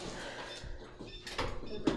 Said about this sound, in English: Here we go, guys, the door.